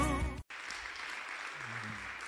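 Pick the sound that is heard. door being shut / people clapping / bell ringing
people clapping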